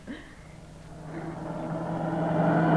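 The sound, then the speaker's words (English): Car engines drone and steadily grow louder, the whirring hum building as vehicles speed past on a road through farmland in the dark, ending fairly loud with no voices over it. “Hey, look at those cars whiz by.”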